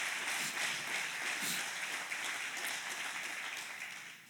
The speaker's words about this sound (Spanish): Amén, dale un aplauso fuerte al Señor, dáselo a Él.